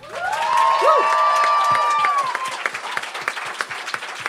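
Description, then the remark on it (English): A live-show audience greets the evening's guest with loud applause, cheering and whistles that rise at once, a sustained whistle tone standing out, then the clapping thins into scattered individual claps as the crowd settles. “Give us a huge round of applause for our guest tonight”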